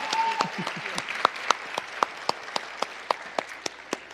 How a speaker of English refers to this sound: Give her a hand clap.